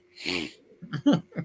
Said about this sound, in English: What the fuck? Sorry, I don't know what happened. I was trying to mute myself because I thought I was going to sneeze.